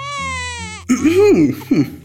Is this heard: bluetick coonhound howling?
no